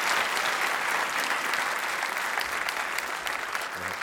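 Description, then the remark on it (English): Sustained applause from a live show audience, a dense, steady patter of many hands clapping at an even loudness throughout, with no voices standing out above it. “But we want to give you guys a round of applause.”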